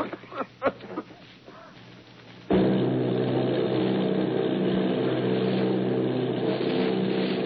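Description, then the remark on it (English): After a few scattered knocks and rustles, heavy engines of Army bombing plane B-843 and its group of eight bombers off Bayonne, New Jersey, suddenly cut in with a loud, steady drone that holds unbroken to the end, like bombers flying overhead. “Army bombing plane B-843 off Bayonne, New Jersey. Lieutenant Bolt commanding 8 bombers, reporting to Commander Fairfax Langham Field.”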